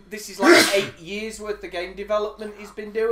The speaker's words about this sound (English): Bless you.